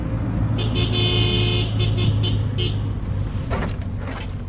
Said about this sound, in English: I'm riding north in the back of a Songtao, a pickup truck with benches in the back